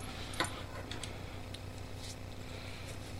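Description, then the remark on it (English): A small jingle bell on a Rupert Teeth novelty pen shaped like a wiener dog gives a few faint, scattered tinkles with a soft clicking rattle among them, all over a steady low hum. No one speaks. “It's got a little jingly bell, if you can hear that.”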